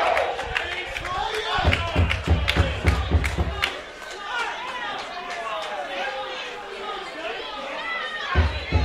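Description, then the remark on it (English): A noisy arena crowd roars with overlapping chatter and shouts as a man with a microphone tries to quiet it, punctuated early on by a run of sharp claps and thumps over a low rumble, then settling into a steady, loud murmur. “Trying to quiet the crowd down.”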